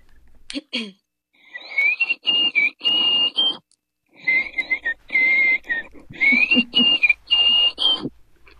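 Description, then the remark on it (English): A person whistles the As It Happens theme song in short, breathy, high-pitched notes, moving through two phrases with a brief pause between them, fairly loud and with no talking. “whistling the As It Happens theme song”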